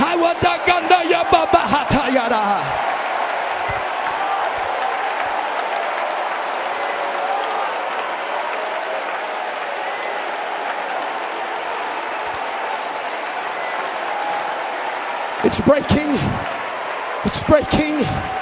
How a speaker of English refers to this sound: Raise your hands right now above your head. I want you to begin to clap your hands above your head with a shout of God.